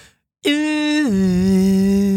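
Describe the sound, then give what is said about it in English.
A loud, blaring foghorn sounds after a brief silence, a single steady blast that drops partway through to a lower, deeper pitch and holds there until the end. “Can I get a foghorn?”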